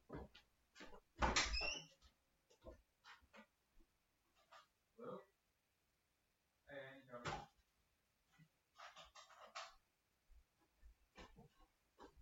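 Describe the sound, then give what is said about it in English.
A front door opens and later shuts, heard as sharp latch clicks and a brief creaking squeal, with scattered thumps and faint murmured voices in between, quiet overall. “Sorry, that's the door.”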